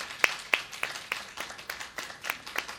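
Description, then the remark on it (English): Church audience applause for volunteers who serve in the church ministries, a steady patter of overlapping hand claps with a few sharper, louder claps standing out at first, with no voices, fairly subdued overall. “if you serve in Growth Track, teaching or leading Growth Track, any of those ministries out front, throw your hand up and let's give God a round of applause for you.”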